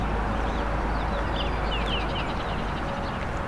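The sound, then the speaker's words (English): A Baltimore Oriole sings a few short, faint whistled phrases, mostly in the latter half, at 50 Point Park (50 Point Conservation Area), nearly buried under a steady, loud roar of highway traffic. “There we go. The Baltimore Oriole.”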